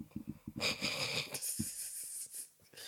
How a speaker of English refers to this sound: What, can I not breathe? That's a reaction, you donut. Come on, I'm breathing.